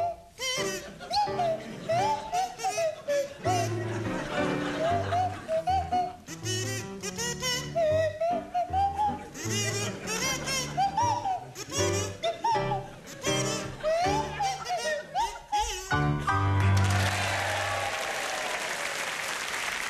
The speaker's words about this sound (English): to feature Sandy Toksvig on kazoo and Tim Brooke-Taylor on the Swanee Whistle